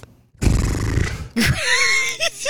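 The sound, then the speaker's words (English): A person imitates a horse neighing: a breathy, snorting rush followed by a high, wavering whinny that trails off, loud, with no other talk. “You know how you see horses? Mm-hmm. And they go...”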